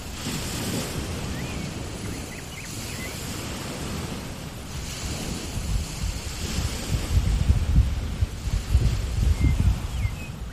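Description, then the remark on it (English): Steady, rumbling ocean surf washes onto a beach below a green bluff, swelling louder toward the end, with a few faint, brief blackbird calls chirping above the roar. “So I was actually next to the waves and listening to some blackbirds call, which is pretty cool.”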